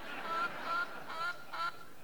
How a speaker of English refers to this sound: We've got the chicken has settled down considerably. I think we need to feed her more because she's not actually making deposits on the prediction.